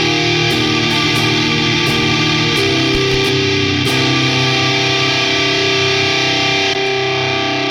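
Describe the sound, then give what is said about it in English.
An electric guitar played through a Muffaletta fuzz distortion pedal on its Civil War setting, loud and thick with buzzing harmonics, sustaining a few heavy chords that shift twice before ringing out. No one speaks. “Again, if you listen to the Muffaletta, the Civil War.”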